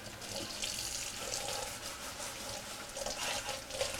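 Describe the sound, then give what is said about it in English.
Steady running tap water splashes into a sink while a non-stick pan is washed under it, a continuous hiss with small shifting splashes and no talking. “All right, so we're washing this thing and see how it goes.”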